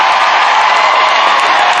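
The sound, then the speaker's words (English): A large crowd at a dog show roars and applauds as the favored dogs trot past for the judge, a loud, sustained wash of cheering and clapping, dense and continuous throughout with no individual voices standing out. “But as you can see, as the favorites clump by, the crowd roars and their approval.”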